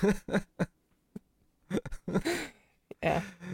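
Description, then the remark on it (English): A person imitates a dramatic gasp in the way of Lithgow, a few short, breathy vocal bursts with brief pauses between them, the last ones longer and more forceful. “I could do the gasp a little bit.”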